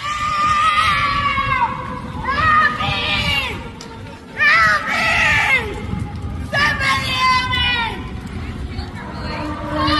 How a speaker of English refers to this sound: Ladies riding a bike down the middle of the street. You see this viral video? Guy in the middle of the day steals her bike. She's screaming for help.